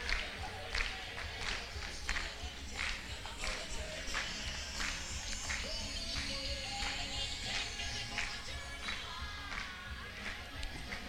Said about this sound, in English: come on, y'all stomp your feet, all right?